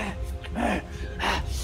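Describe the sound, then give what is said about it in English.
A voice acts out the pained gasp of a character wincing in pain after lunging, followed by strained, heavy breaths: two rough, voiced exhalations over a faint low rumble. “He lunges towards your direction as you move, but he winces in pain.”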